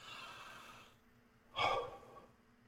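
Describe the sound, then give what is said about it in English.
A long, breathy exhale after inhaling cannabis concentrate fades out, followed by one short, harsh cough burst, with no talking. “I should probably stop talking until I finish coughing.”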